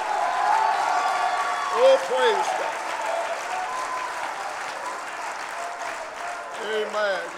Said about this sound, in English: How about it? If you feel that way, clap your hands and shout unto God tonight.